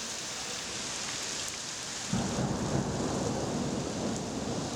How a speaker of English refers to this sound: September 29th, 1938. It's a Thursday, and it's raining in Prague.